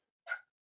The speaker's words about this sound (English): Dog just came into the room, just barking.